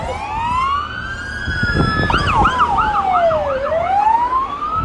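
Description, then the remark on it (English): Loud emergency vehicle sirens pass by, a long rising-and-falling wail overlapped by a faster warbling yelp, all over a low rumble of traffic, with no one speaking. “There are some free traffic services noises for you.”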